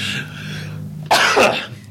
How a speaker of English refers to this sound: But does that bless you or what? It was a cough. All right. So cough you.